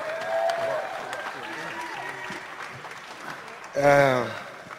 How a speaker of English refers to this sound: Ladies and gentlemen, give a big round of applause for none other than Floyd Mayweather.